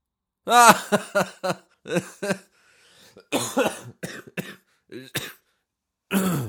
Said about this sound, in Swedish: Ursäkta, jag är lite hostig.